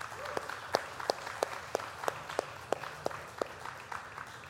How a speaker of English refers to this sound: If you're a grandparent in the room, could you raise your hand nice and proud? Come on, put them up there. Come on, put them up there. Can everyone give them a round of applause, please?